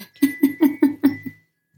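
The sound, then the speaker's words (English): A timer alarm, set as a reminder to pull the laundry off the line, goes off with a quick run of six evenly spaced, buzzy beeps, each rich in overtones, the last one softer and shorter, then silence. “That is the pull the laundry off the line timer.”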